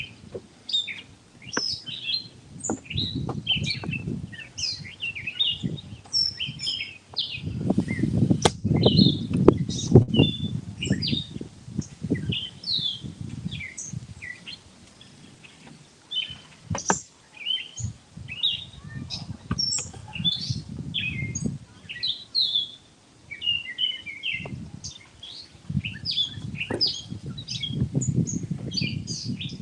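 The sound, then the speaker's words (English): Outdoor ambience beside Rancocas Creek, with many small birds chirping and tweeting steadily throughout, layered over a soft, rumbling low background of wind or moving water that swells at times. “This is part of the Rancocas Creek here.”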